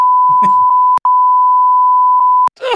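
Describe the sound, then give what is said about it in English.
A loud, steady censor bleep tone runs for over two seconds, briefly cut once, covering the last word of a man's joke, with clipped fragments of his speech just before it and talk resuming right after. “I might beep it and just let the audience wonder what the hell he said.”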